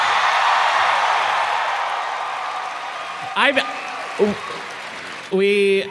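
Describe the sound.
A live audience applauds Griffin McElroy in a dense, steady wash that slowly thins and fades as Travis McElroy shushes it, then a few short bursts of voice break in as it dies down.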